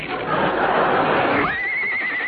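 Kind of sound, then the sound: animal, horse neighing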